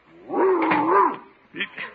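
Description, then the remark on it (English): A 140-pound Great Dane lets out a long, deep, growling bark, followed by a shorter, rougher second bark. “That 140-pound Great Dane could knock down the door if he took a run at it.”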